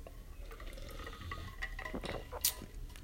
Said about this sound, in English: I had to take a sip, excuse me.